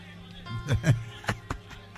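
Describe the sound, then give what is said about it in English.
A crowd of voices shouts out together in a short, loud burst of response, followed by a few scattered sharp calls trailing off over about two seconds. “I love the way you are shouting.”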